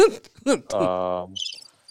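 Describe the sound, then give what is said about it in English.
A brief vocal hum gives way to a short crickets sound effect played from a button, rapid high-pitched chirping pulses that are fairly soft and fade out quickly, like a comedic silence effect. “Where's my crickets button?”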